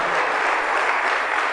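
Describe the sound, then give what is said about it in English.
An audience in a church claps a clap offering to God, a steady, dense wash of applause, loud and sustained throughout with no voices standing out. “Somebody give God a clap offering inside this place now.”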